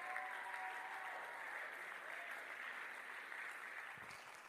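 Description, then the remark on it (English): An audience claps steadily and shouts praise to God, a dense, sustained wash of applause and raised voices without pause, fading slightly toward the end. “If you see a clap and shout, scream right now, rise up to your feet and give God a better shout of praise.”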